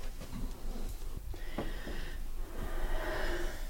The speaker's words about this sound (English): Again, with the labored breathing, cannot breathe.